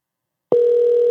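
A loud, steady telephone dial tone starts abruptly after a brief silence and holds unbroken to the end as a phone call is being placed, clear with no one speaking.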